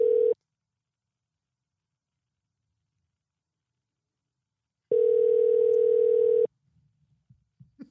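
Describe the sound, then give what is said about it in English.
A phone's ringback tone on an outgoing call to a Sonic restaurant during the lunch rush: a steady electronic hum that briefly ends at the start, then after a long silence sounds again for a second and a half, clear and alone. “None of them answer the phone.”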